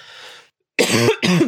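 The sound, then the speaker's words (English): A soft breathy intake, a brief pause, then two loud, harsh coughs in quick succession, alone with no talking. “Look at that, me coughing.”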